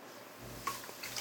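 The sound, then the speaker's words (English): Beer pours into glasses with a soft, steady splashing and fizzing that starts partway through, fairly quiet, with no voices. “You only pouring three instead of four?”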